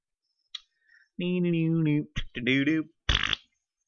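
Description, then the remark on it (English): A voice imitates a loud fart: a long buzzing blast, a brief pause, then a second shorter rasp, ending with a quick breathy hiss. Alone, with a few faint clicks before. “Big fart noise.”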